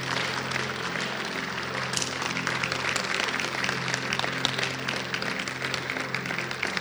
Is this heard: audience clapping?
yes